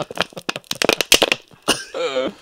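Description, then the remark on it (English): A rapid run of dry, crinkly crackles, like squeezing a plastic water bottle, ends in a short, strained, wheezy whistle: a person imitating an asthma breathing sound called "the water bottle". “This is this is my favorite asthma sound. It's called the water bottle.”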